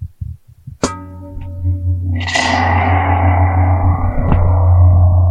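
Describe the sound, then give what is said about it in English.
A sharp struck tone rings out, then a dense, gritty wash swells and sustains with a heavy low drone, sounding distorted and drenched in reverb, loud and continuous with no talking. “And if you put this through distortion and reverb, it sounds like a stop.”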